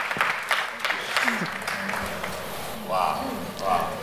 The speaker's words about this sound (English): Please clap for them. Thank you very much.